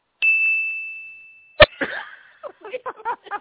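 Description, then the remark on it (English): A single bright bell ding rings out clearly and fades slowly over about a second, signaling a wrong answer in a quiz, followed by a sharp knock or cough and then people starting to talk. “Does that bell mean I won a prize? That means it was wrong.”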